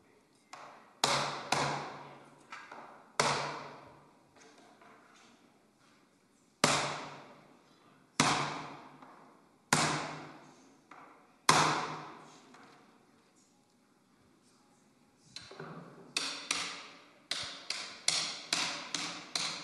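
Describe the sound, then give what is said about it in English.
A hammer strikes the metal head hoop on a wooden barrel, driving it flush with the chime, with sharp, ringing blows at uneven intervals and pauses between, then a quicker run of lighter taps at the end. No talking. “When hammering on the head hoop, you want to make sure that it's flush with the chime.”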